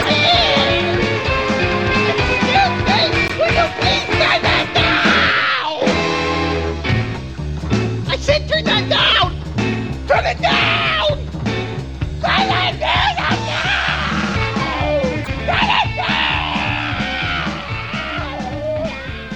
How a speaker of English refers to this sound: Oh, turn that music down, please. That music down, please. It's for the ears. Turn that music down. Excuse me, I said that was hurting my ears. Oh, God. Turn that down. Turn that down.